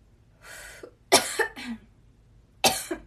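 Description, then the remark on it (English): A string of harsh coughs: a breathy rasp, then two sharp bursts in quick succession, a pause, and one more forceful cough near the end. No speech. “I really don't cough, people.”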